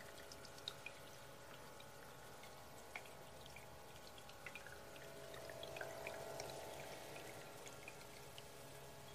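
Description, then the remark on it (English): A small stream of water trickles steadily and quietly, with scattered droplet plinks and splashes over a continuous soft wash; no voices, gentle throughout. “Sound of a little bit of water trickling.”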